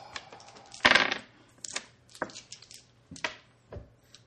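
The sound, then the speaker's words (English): Dice clatter onto a hard tabletop in a loud burst, followed by a scattering of smaller clicks and taps as they tumble and settle, with no talking. “I have more dice here. So. Yeah, sorry. All of the dice.”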